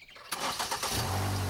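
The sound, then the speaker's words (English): A car engine outside cranks with a quick burst of starter noise, then catches and settles into a steady low idle hum, fairly loud, as Mark starts the car and backs out of the driveway. “Outside, there was the sound of a car starting.”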